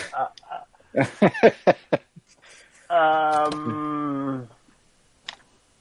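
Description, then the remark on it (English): A set of keys is dropped, clattering down in a quick burst of sharp metallic clicks, followed by a sustained voice holding a steady drawn-out note. “Oops, I dropped my keys. One set of keys.”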